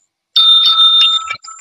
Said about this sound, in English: Oh, you're doing a bell? Oh, I love it.